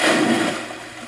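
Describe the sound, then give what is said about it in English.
A big, loud splash of water as a person jumps from the top of a ladder into a pool in a cannonball, holding their feet with chin tucked, bursting at once and fading quickly over about a second, with no voices. “without hesitation at the top, jumped fast, yelling out, "Cannonball!" As he grabbed hold of his feet and tucked his chin into his chest, making a huge splash.”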